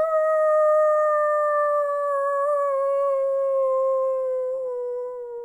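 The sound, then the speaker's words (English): A voice imitates a howler monkey with one long, loud, sustained howl that holds a steady pitch and slowly sinks lower over about five seconds. “you all ready on those monkey call impressions? I was born ready. First up, howler monkey.”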